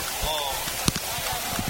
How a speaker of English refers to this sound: And we're under a heavy shower now.